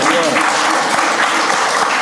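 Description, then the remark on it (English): A crowd claps steadily and fairly loudly for the whole two seconds, many hands blending into a dense, even wash of applause with no pauses. “Goddamn, we never need to clap for that.”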